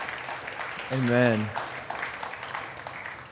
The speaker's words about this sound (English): Hey, clap.